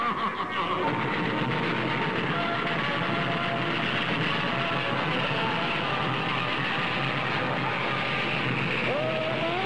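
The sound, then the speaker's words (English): A ghost train ride rattles along its tracks in a steady, dense clatter and rumble, loud, continuing without pause for the whole stretch with faint squeals threaded through. “There are lots of ghosts in here. You'll shiver and quake, and the ghost train.”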